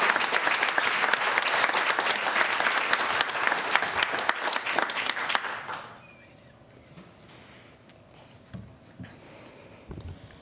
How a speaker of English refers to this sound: Let's give all our honorees one more round of applause. Thank you.